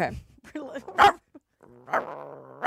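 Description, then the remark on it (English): A person's voice imitates a dog, giving a few loud barks and growly yips with a brief pause midway, ending in a longer whining bark. “So this is my dog bark.”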